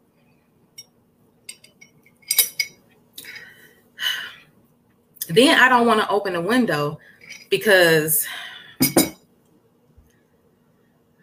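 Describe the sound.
A drinking glass gives a few light clinks as it is picked up and set down, scattered among short handling noises, followed by a person speaking.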